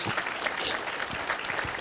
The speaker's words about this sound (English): I'm going to wait while you clap your hands there.